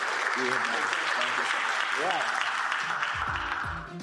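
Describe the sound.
A crowd claps steadily in a dense, loud round of applause, with scattered voices and faint talk underneath before the clapping begins to fade at the end.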